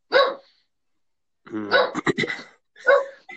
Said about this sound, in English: sorry, the dogs are though distracting. I know, but What kind of dog you got? it's a Jack Russell. She thinks she's a Rottweiler, but I told her she isn't.